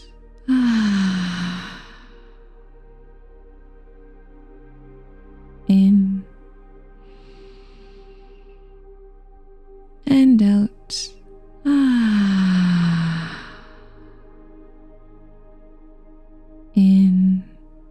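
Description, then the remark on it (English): Slow, deep breathing: long audible exhales that trail off like soft sighs, alternating with short sharp intakes of breath, separated by quiet pauses. “Keep breathing in and out.”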